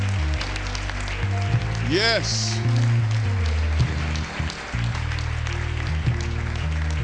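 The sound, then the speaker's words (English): An audience claps in praise to the Lord, a dense, continuous patter of many hands under a speaking voice, with sustained low instrumental tones and a brief rising vocal whoop early on. “Come on and give the Lord a hand clap of praise in his presence.”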